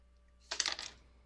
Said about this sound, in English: And then roll your hunger die, please.